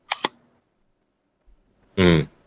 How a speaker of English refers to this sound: I like that. Yeah, I think that thump is just the shutter like really closing as it should.